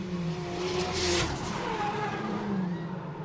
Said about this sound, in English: And the cars you can hear on track at the moment are the GB3 championship cars that are having their race, so this is actual racing you're hearing in the background.